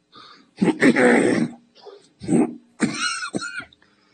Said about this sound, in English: I'm working on this trademark cough. What do you think? It's getting better, too.